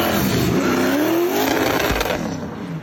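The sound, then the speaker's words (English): A Corvette sports car engine, the car stripped down and in the final stages of restoration, roars with its pitch climbing as it revs hard and then easing off, loud and steady with no voices. “Or this is supposed to be a Corvette.”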